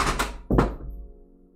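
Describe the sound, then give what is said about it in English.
A phone being dropped: a quick clatter of light knocks, then a heavy, solid thunk as it lands, with a short dull ring fading out afterward. No one speaks. “I dropped my phone.”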